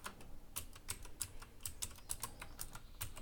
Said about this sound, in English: And instead of typing a capital J, I'll just hit a small J here.